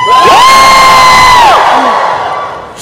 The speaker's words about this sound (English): Don't forget how to wave your hands to get the crowd to woo.